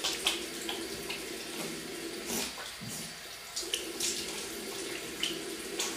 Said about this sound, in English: So I'm gonna wet my face first, and then I'm gonna put some simple hydrating face. Why am I advertising it? I'm gonna put some face wash on, and then wash. But it's water first.